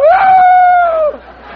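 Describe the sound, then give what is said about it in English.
A man's voice imitates a rooster crowing: one loud, drawn-out call that rises quickly, holds a steady pitch for about a second, then breaks off, leaving faint room noise. “The rooster, the one I just did.”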